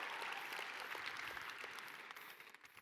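A crowd claps together in a dense, steady burst of applause that holds strong for a few seconds, then begins to thin and soften toward the end. No one speaks.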